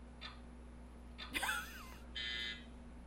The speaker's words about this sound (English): You have to hit your buzzer, ma'am.